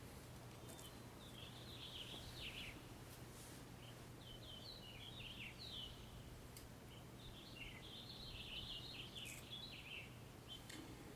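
A finch sings in quick, bright warbling phrases that recur every few seconds, fairly faint, over a steady low hum and soft outdoor background noise.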